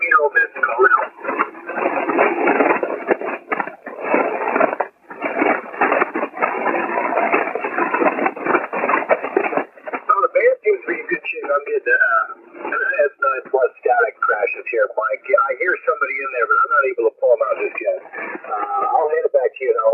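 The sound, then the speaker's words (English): Loud crackling static crashes and hiss fill a narrow shortwave radio band for several seconds during an amateur radio net, then a voice speaks through the noisy, band-limited signal. “I got loud static crashes as well.”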